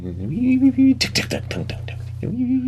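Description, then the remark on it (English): A voice imitates an idling engine's 'idle hammer' with a steady low hum, broken in the middle by a quick run of about six sharp, clattering knocks before the hum resumes. “that's called Idle Hammer. It does that. It almost sounds like the Terminator theme song.”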